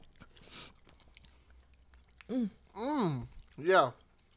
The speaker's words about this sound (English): If you don't want to hear the munching and whatnot, check the YouTube out